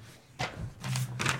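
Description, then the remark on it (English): Paper crinkles and rustles in three short bursts as a paper map is picked up and unfolded, fairly quiet, over a low steady hum with no talking. “The Droosh picks up the paper.”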